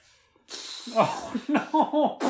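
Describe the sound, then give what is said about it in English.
A mouth-blown raspberry fart noise: a breathy, hissing rush of air followed by about five short, buzzy, low sputtering bursts in an uneven rhythm, fairly loud with no talking. “A fart noise with your mouth right now.”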